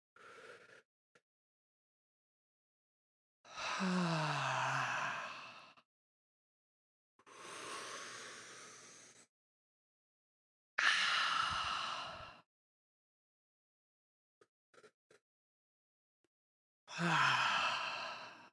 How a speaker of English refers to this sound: Listening, we're all doing our weekly 3 breaths because I know you're not breathing any other time.